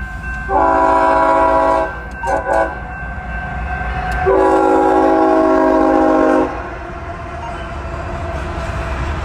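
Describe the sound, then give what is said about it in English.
The horn of an intermodal oil freight train, with ES-44 and AC-44 locomotives, sounds loud in a long blast, a brief one, then another long blast, over the steady low rumble of the passing train. “Looks like an intermodal, oil train.”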